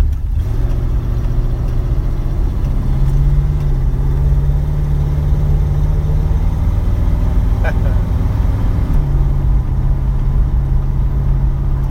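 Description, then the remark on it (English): An original muscle car's engine rumbles at a steady idle, its deep, loud drone holding evenly before settling slightly lower near the end. “Yeah, you just there's no replacement for the sounds and the smells of an original muscle car.”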